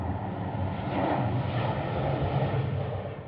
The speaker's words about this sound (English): Now, I can't find anything about that being a law back in the 80s, but for one, that seems impossible to avoid, and two, tell that to the airplanes that are constantly interrupting our recordings.